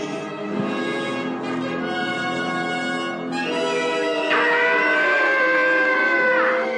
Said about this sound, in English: what it would sound like with Luke falling, but with the classic Tom from Tom and Jerry fame. Let's hear that scream.